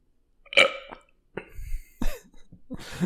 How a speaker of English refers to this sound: … just burped